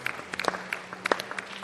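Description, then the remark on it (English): An audience clapping for a first-time visitor coming to the front: scattered, uneven hand claps overlapping at an irregular rhythm, fairly soft, over a steady low hum with no voices. “Oh, keep clapping for him as he comes.”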